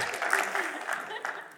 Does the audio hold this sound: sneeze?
no